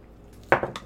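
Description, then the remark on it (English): Dice clatter across a hard surface in a quick burst of sharp knocks that bounce and settle over under a second, fairly loud, with no talking. “Let me roll.”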